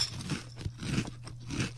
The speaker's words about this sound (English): You got to crunch into the microphone.